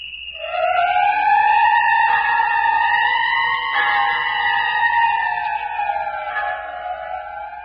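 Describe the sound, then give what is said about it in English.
A single long whistle blast, blown as a signal in the radio drama The City of the Dead, holds a shrill, steady tone for about seven seconds, wavering slightly in pitch before fading near the end, with no voices. “The whistle! That's Phyllis!”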